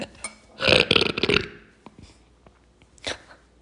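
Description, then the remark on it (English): A loud burp rumbles for about a second, followed after a quiet pause by a shorter, fainter burp. No one speaks. “If you guys, like, burp, like I burp, I need you to text me immediately and let me know.”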